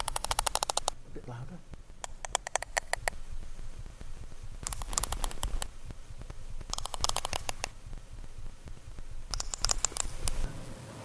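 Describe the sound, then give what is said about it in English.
Sperm whale coda clicks, patterns of clicks the whales use to communicate: five short bursts of rapid, sharp clicks, each lasting about a second and separated by brief pauses, over a steady low underwater rumble. “These are what are known as codas, and they're patterns of clicks used for communication.”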